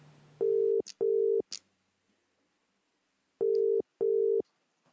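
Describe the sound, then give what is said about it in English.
A telephone ringback tone on a phone call from Brisbane to Perth, Australia, placed for an interview, sounds twice in the familiar double-ring pattern, two short steady buzzy bursts, a pause, then two more, heard clearly down the line with no one speaking. “As Clare lives in Perth and I live in Brisbane, we had to do this interview over the phone. It didn't start well.”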